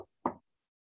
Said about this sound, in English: And then I'm like looking around, and suddenly I hear a knocking on the cabin door again.